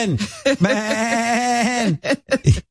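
A human voice imitates a billy goat's bleat, a single drawn-out, quavering nasal cry lasting over a second, bracketed by short, laughing vocal bursts, fairly loud.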